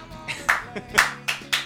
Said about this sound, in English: a round of applause from the fans who are in the audience. Is that early clap, clap, clap, clap.